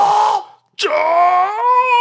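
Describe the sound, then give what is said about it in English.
A human voice imitates a screaming bird with two loud, harsh squawks: a short cry, a brief pause, then a longer, drawn-out screech holding a strained, steady pitch. “Because the bird is fucking screaming. I remember that part. Because, fuck birds. How did it scream?”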